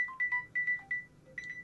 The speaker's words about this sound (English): Sorry about that. Your phone rang this time.